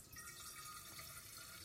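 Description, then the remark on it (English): A thin, steady trickle of a small amount of water pours into a metal waterphone instrument for a couple of seconds, faint, with a soft hissing splash and no talking. “Now, the waterphone requires a small amount of water put inside.”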